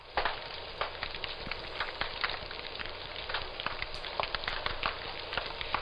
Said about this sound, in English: Some marine invertebrates also make sounds, usually while feeding. Here are two clips of sounds made by marine invertebrates. The first is snapping shrimp, and the second is feeding sea urchins.